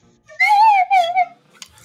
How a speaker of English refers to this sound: Not the tactical whistle? That's the tactical whistle. The tactical slide whistle? Check.